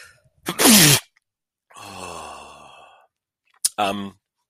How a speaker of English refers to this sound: I need to sneeze.